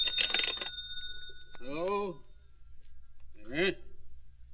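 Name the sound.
telephone bell ringing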